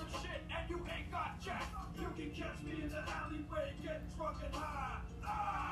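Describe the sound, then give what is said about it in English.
A man in a rap video shouts and bellows continuously over a steady, thumping beat, his loud, strained voice filling the whole stretch. “Ah, dude, I have to yell and hold a dog. That's what rappers do.”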